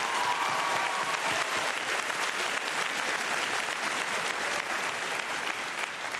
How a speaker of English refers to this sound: Y creo que se merece el mejor aplauso. And I think he deserves a better round of applause.